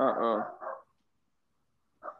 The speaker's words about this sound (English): Oh, we got some dogs on the pod today.